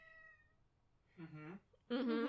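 A cat meows twice, a drawn-out cry followed by a louder, more strained one, after a faint tonal whine at the start, during a standoff with a dog over territory.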